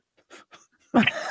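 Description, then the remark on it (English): A single loud sneeze: a few short, breathy intakes build up, then an explosive, hissing burst that trails off into a breathy rush of air. “God bless you.”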